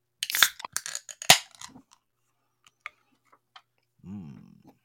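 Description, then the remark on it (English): Beer cans, bought at a gas station, crack open with sharp metallic pops and a burst of fizzing hiss, followed by a few faint clicks and a brief low vocal sound. “So I figure we'll just take these oil cans, crack them open, and see what happens next, eh?”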